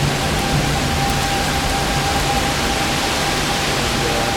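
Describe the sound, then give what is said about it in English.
A heavy downpour roars steadily and evenly throughout, a dense, loud hiss of rain heard from under a porch, falling so hard it makes a mist in the air, with no voices or pauses. “It's not raining on me because I'm under the porch, but it's raining so hard that there's like a mist in the air.”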